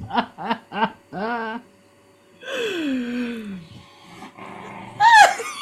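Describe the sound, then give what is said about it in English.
A female dog growls and grumbles in a room at home: three short bursts, then longer drawn-out vocal growls with a falling, whiny pitch, ending on a sharper, higher yelp. No one talks. “What is she growling at?”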